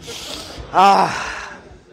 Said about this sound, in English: So let's get up. Woo! Let's take some breaths.